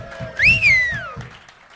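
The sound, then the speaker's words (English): A loud, sliding whistle rises sharply and then glides down over a second, riding on a dense bed of crowd clapping and cheering noise. “Like, that's something to clap about.”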